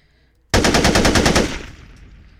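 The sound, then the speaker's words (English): A rapid burst of AK-47 rifle gunfire, about ten sharp shots in quick succession, loud and rhythmic, then a ringing decay trailing off into quiet. No one speaks. “So that's an AK-47.”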